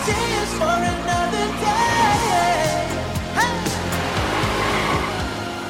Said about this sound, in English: A weird way to do a video, no? Like fellas doing handbrake turns while you're singing, no?